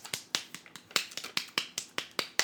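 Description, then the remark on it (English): A quick run of about a dozen sharp hand claps, slightly uneven in rhythm, each a crisp bright snap with no talking over them. “These are my claps for everyone in Hogwarts who are following in Forge's example.”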